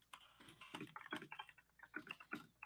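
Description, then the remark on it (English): Rapid, uneven clatter of furious typing on a mechanical keyboard, dense bursts of sharp clicks, fairly quiet overall with no voices. “Oh, I hear furious typing.”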